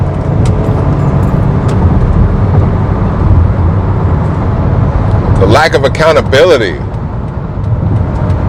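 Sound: road noise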